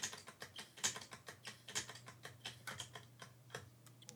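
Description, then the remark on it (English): Rapid, sharp ticks from a spinning battery-powered prize wheel clatter along in a steady run of about twenty clicks, over a low background hum with no one talking. “hopefully you can hear the ticking.”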